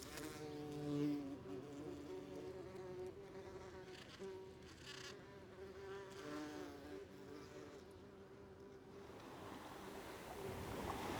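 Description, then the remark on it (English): A bee buzzes steadily, its droning hum holding a constant pitch throughout, with a soft wash of background noise swelling toward the end. “There she is. It's Super Bee.”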